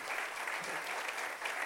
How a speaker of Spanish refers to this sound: Así que la verdad es que vamos a dar un aplauso fuerte no a la familia, sino a Dios, porque fue Dios el que lo hizo.